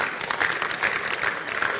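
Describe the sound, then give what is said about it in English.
An audience claps together, a steady wash of many hands with a faint regular beat running through it, fairly loud and continuous for the whole moment, with no voices standing out. “You see, those who don't believe are not clapping.”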